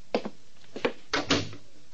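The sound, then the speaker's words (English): An apartment door is handled and shut: a few light clicks and knocks, then a firmer double thud as it closes, with quiet room tone and no voices. “Don't make a sound. I've been waiting for you. Close the door.”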